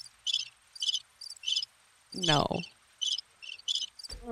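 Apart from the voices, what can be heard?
crickets chirping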